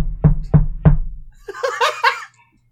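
Three firm, evenly spaced knocks on a front door, loud with a solid thud, followed by a short burst of laughter.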